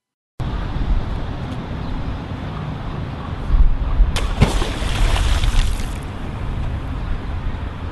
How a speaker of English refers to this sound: He decided to run for president in 2008, and his only memorable moment was a TV commercial where he stares at the camera for more than a minute, then picks up a rock and throws it into a body of water.